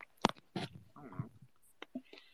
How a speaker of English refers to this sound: So I'm going to, here's the first bite.